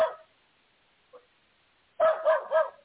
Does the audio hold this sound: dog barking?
yes